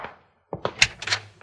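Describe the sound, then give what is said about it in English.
A door being opened: two dull thunks followed by a sharp latch click and a brief rattle, then a soft final tap. No voices. “Open the door and see.”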